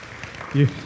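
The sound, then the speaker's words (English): A short stretch of audience applause for the speaker's wife, a steady, crackling wash of many hands clapping, with a brief low voiced cry rising out of it partway through. “You can clap for her.”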